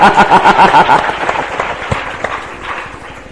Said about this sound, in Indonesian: Beri tepuk tangan yang meriah.